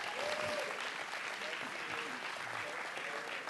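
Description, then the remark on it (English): An audience at TWBC claps steadily one morning to celebrate its kindergarten-through-fourth-grade children, a dense, continuous wash of many hands at a sustained loud level for several seconds, with faint voices murmuring and calling out underneath. “Y'all give our kids a big hand clap of praise this morning.”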